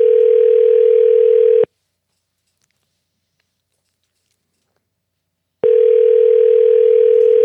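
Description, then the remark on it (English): A phone ringback tone from a call placed to the business Mid and Mod: a steady, fairly loud electronic burr plays, falls silent for about four seconds, then starts again, with no voices. “I think it says a private number when I call, which is not good.”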